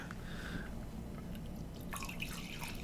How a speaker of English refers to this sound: So you're telling me that the coffee that we're drinking today was personally delivered from Europe? It was. To the luxurious T-Squared Studios. Luxurious, yes. Excellent. Well, I have brewed up this coffee. Let me pour that out a second.